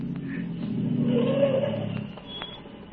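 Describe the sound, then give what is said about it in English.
A car engine hums on the road, swelling louder with a rising whine as it draws near, then easing off after a couple of seconds. No voices, just the steady motor rumble. “And then I heard another sound on the road. There was a car coming.”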